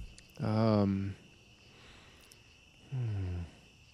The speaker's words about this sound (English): I just like hearing the crickets.